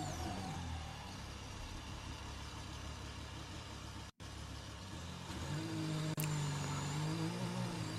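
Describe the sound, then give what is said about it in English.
A Formula One car engine drones loudly and steadily, with shifting revs and a sudden short cut in the sound midway, then rising pitch as the car accelerates again. “A lot of car driving right now.”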